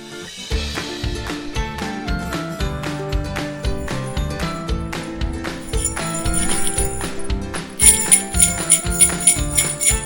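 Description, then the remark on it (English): A set of new jingle bells shaken in a steady, rapid rhythm, fairly loud, with bright metallic tinkling that grows busier and more intense near the end. No voices. “I want Oliver's new jingle bells that we got him.”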